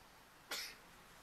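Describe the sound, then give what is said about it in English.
A single quick sneeze bursts out sharply and fades within a moment, set against quiet background with no talking around it. “Bless you”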